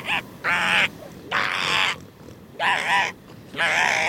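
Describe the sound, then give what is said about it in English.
Elephant seal calls: five loud, harsh, bawling cries in quick succession, each lasting about half a second with short gaps between, raspy and wavering in pitch, with no talking. “Wait, can we just put in some elephant seal noises right now?”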